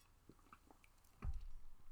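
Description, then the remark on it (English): A quiet sip from a drink, with soft wet slurping and mouth clicks, followed by a dull low thump and a faint swallow. “I gotta take a sip before I start going on about these ones.”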